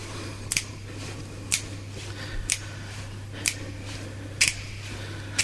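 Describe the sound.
Crisp mouth clicks from a beatboxer, about six sharp ticks spaced roughly a second apart in a steady rhythm, fairly loud over a low background hum.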